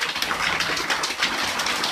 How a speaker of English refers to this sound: And I'm just going to pause and let you listen to the rain. It's amazing.